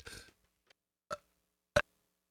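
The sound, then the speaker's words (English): A partly muted belch, fairly quiet: a breathy opening burst followed by two short, clipped throaty pulses spaced apart, mostly held in as the person tried to mute it. “I just belched and I tried to mute it. You got a little bit of it.”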